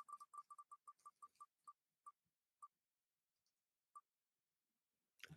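A prize wheel holding entrants' names is spun to draw a winner, with rapid, crisp clicks that steadily slow and spread apart until the wheel stops, followed by a short, louder burst of sound at the very end.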